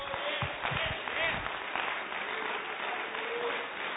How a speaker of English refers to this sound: Why don't we clap our hands unto the Lord?